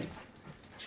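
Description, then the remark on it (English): A dog whimpers and lets out a couple of short, high yips in a brief burst with no talking over it. “And of course, you can tell that we have a dog, so come here.”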